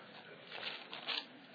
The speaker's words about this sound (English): Pages rustling. Am I hearing clicks out there?